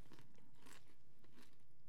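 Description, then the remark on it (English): Crunching on maple-drizzled popcorn: two crisp, crackly bites about half a second apart, sharp and bright, with softer chewing between them and no talking. “Who knew that maple drizzle would have been this good? Like, I like popcorn.”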